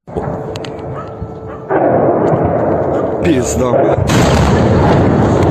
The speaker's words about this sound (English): I think it's cut 11, is it not, of the bomb. Here's what they think may be a fuel air bomb or a thermobaric rocket.